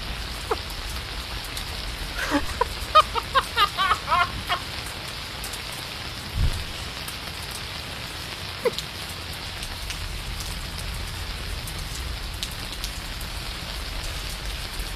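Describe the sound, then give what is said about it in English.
A rainstick sound effect: a steady, even patter like falling rain that continues for the whole clip, broken early on by a brief run of sharp, rhythmic clucking pulses. No one speaks. “Rainstick.mp3.”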